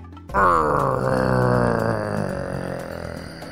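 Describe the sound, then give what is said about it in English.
A voice imitates a loud animal growl, the loudest growl of the story characters Omari and Adu: one sustained, rough, low-pitched roar that starts abruptly and holds steady for about three seconds before easing slightly, with no other talk. “When the countdown was done, Omari and Adu let out the loudest growl together that they could ever make. Growl with me.”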